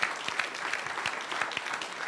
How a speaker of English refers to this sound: Let the redeemed of the Lord say so. Give the Lord a good hand clap all over this place.